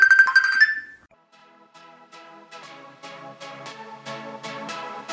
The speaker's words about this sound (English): I think I've got a phone call, so I have to answer it. Give me a minute, yeah?